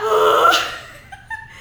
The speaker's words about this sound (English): I have the hiccups and I hate them.